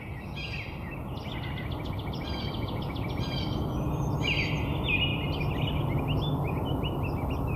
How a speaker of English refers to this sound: There's the robin here. You can already tell from this how the soundscape looks, how rich it is.